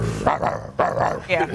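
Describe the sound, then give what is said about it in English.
A person's voice imitates a growling dog in a few rough bursts, loud and throaty, with short gaps between them. “When you bring out a dog, what is that?”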